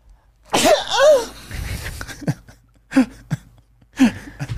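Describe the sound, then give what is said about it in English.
A loud sneeze with a voiced, rising-and-falling burst, followed by two shorter, sharp sneezy bursts spaced about a second apart, with quiet breathing between them and no talking. “Sneeze ASMR.”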